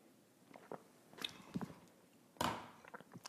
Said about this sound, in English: And join me now for the unparalleled pleasure, the dopamine hit of the day, the thing that makes everything better, including the damn pandemic. It's called the simultaneous sip, and it happens now. Go.